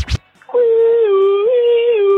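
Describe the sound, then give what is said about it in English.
A red alarm siren: after a brief sharp burst and a short pause, a loud, sustained mid-pitched wail holds steady with one slight rise in pitch, heard alone without talking. “That's the red alarm going off”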